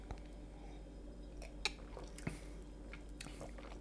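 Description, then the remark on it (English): Someone takes a quiet sip of an egg cocktail, with soft wet mouth clicks and a gulp or two over a low background hum, no talking. “What's in an egg dick cocktail? Before you tell me, I'm taking a sip.”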